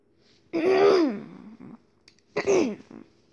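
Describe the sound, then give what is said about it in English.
Two loud throat-clearing bursts, the first longer and the second shorter after a brief pause, each a rough voiced rasp that drops in pitch, with no speech around them. “Let me clear my throat.”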